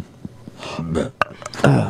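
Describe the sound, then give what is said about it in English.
Strained throat noises as someone with a little chest pain tries to force out a burp: a few small gulping clicks, then short voiced croaks and grunts that never become a full belch. “Try burping.”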